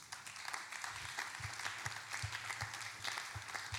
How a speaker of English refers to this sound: Don't stop clapping.